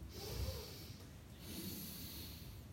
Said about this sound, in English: So this time, breathing in.